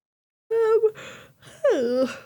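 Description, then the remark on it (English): A big human yawn in two drawn-out parts: a voiced, strained opening and a breathy stretch, then a loud groaning exhale that slides down in pitch. “It's a big yawn.”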